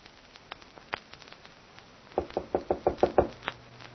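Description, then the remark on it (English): A rapid series of about seven firm knocks on a door at a manor house, evenly spaced, follows a few scattered lighter taps. There is no talking. “Mary, are you all right? Open the door, Mary.”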